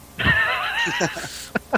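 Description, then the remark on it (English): A person in role-play imitates a lion's roar to voice frustration, a strained, wavering, fairly high-pitched vocal cry lasting over a second, followed by two short, sharp breathy bursts. “Was that role playing, or are you just having a spasm? What happened? That was role play. Okay. Oh, she's roaring her frustration.”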